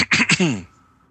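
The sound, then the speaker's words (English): A loud throat clearing: two quick rough, raspy bursts followed by a short voiced grunt, lasting about half a second before fading to quiet. “Let me clear my throat.”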